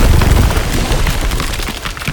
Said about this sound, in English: there is another few rounds of shots, and there is a explosion behind you.